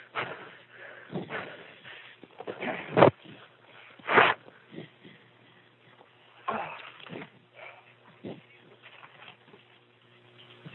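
A door being unlocked by a caller during a phone call: two sharp clunks about a second apart amid faint shuffling and rustling, with a few quieter knocks and handling noises afterward.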